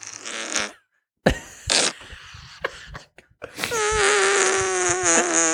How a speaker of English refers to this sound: Excuse me. Is that a fucking whoopee cushion?